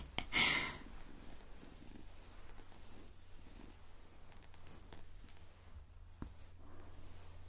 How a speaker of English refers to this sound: There we go, we got one tiny, tiny little purr for you.